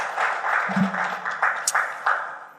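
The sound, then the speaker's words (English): A crowd claps steadily in a dense, crackling wash that holds at an even level, with a few sharper claps and a faint low murmur poking through. “Applaud yourselves for being vulnerable, honestly, and being honest.”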